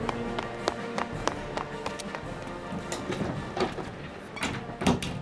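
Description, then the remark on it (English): A circus performers' stage door opens amid a busy backstage bustle where performers prepare for their acts before the big top performance, with scattered sharp taps and clatters, shuffling movement and faint murmuring voices in the background. “You've entered the circus performer's stage door.”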